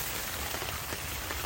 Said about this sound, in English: I'm out back under a tent right now because it's raining out and there's no patio or anything.